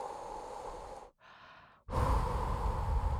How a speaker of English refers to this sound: I'm breathing into a paper bag. Everything's going to be fine.